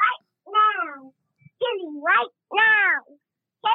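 A cat meows repeatedly, several loud, drawn-out wavering cries separated by brief pauses, with no one speaking.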